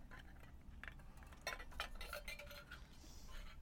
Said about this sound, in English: Don't mind me while I sip up my coffee.